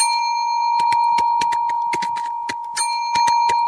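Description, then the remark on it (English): A steady electronic ringing tone holds throughout, overlaid by a quick, irregular series of sharp tapping clicks as a woman types on her phone while leaning on the back of a chair. Fairly loud, with no voices. “And while that was going on, this woman was standing above my chair, like leaning on the back of my chair with her phone out.”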